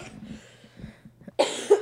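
coughing fit

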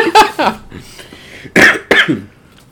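cough

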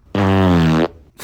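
fart

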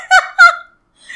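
duck call

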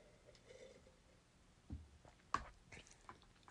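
sipping green tea

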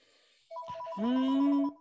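phone ringtone ringing

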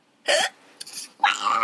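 cough

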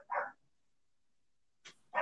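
dog barking

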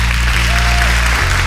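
applause

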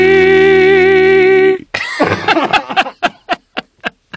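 coughing

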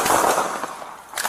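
gunshots fired

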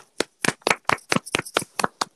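clapping

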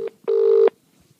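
phone number being dialed

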